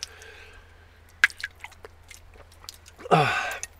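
Wet slurping and sipping sounds of someone drinking well water from a scoop, with small drips and swallows, ending in a louder gulping slurp; no talking.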